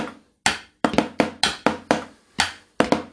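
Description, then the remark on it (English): Improvised drumming on pots and pans with a foot stomped as a bass drum: about nine sharp, loud hits in a loose, uneven beat, each ringing briefly before fading, with deeper thuds underneath. No voices. “I got to move all the way around these pots and pans and to play for you. And I got to stomp my foot for a bass drum.”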